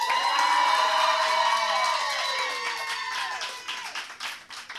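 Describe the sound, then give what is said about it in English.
A comedy show audience cheers with high, sliding whoops and shouts for comedian Judy Driscoll, and scattered hand clapping grows more noticeable toward the end, steady and fairly loud throughout. “And if you want to hear more jokes from Judy Driscoll, clap your hands.”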